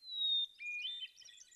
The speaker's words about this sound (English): A short song, very sweet, incredibly complex. Each phrase in a hermit thrush's song lasts less than 2 seconds, but it contains 45 to 100 notes or more and up to 50 changes in pitch.